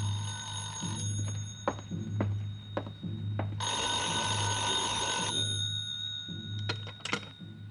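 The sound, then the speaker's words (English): A telephone rings in a small side-street hotel room with a bright, sustained trilling burst over a constant low hum and steady electronic tones, with scattered clicks and taps before and after; no one speaks. “That 6 o'clock plane must have been way out over the Caribbean when the call finally came.”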